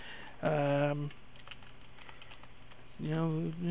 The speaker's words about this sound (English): Do some talking while I'm typing.